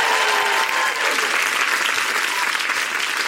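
An audience claps steadily for a few seconds, a dense, loud wash of overlapping hand claps with no voices rising above it.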